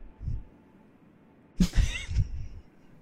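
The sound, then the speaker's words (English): A single wavering, nasal goat bleat rings out after a quiet stretch, lasting about a second and trailing off into low background rumble. “I'm not related to all the goats. I'm not a mountain goat. Cheppy's just like half goat.”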